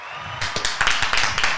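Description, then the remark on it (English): A short burst of live applause, used as a 'correct' sound in a memory game, starts abruptly: many hands clapping in a dense, bright, irregular patter with sharp individual claps standing out, steady and fairly loud throughout. “We can do live applause.”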